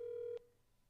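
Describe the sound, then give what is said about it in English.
A steady telephone ringing tone hums for a moment as a call goes unanswered, then cuts off abruptly with a faint click as the line connects to voicemail, leaving quiet background hiss. No one speaks. “if you don't answer, keep that in the episode if he doesn't answer”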